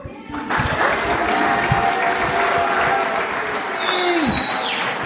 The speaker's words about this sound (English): And here's what we're going to do. We're going to give you a big round of applause, and I want you guys to jump and cheer.